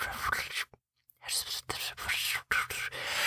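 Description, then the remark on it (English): A voice imitates muttered whispering heard outside a door at night, which turned out to be two Labrador retrievers licking themselves: breathy, hissing bursts of unvoiced sound, broken by a short silence near the start and a brief catch later on. “And muttered whispering.”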